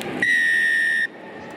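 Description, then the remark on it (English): A single long, shrill referee's whistle blast starting a rugby match between the Highlanders and Moana Pacifica, lasting under a second, loud and steady, over a continuous wash of stadium crowd noise. “Whistle goes, and we're underway as Havili sends it away down as far as fullback Ratu Maitavuki Neepkins.”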